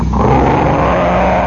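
A loud, continuous engine roar fills the whole moment, dense and rumbling with a low droning pitch, as a pack of race cars thunders past the starting line after the first lap, shaking the ground.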